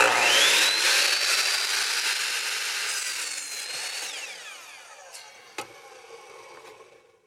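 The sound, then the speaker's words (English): A power saw whines up to speed and bites through wood in a loud, continuous buzz, then spins down and fades, leaving a few faint knocks at the end. “Now, they didn't have power tools back then, I'm pretty sure.”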